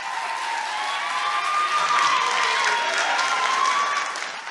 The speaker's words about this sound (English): Yeah, that's right. Get a round of applause in the studio. Well done. Well done. A round of applause back there.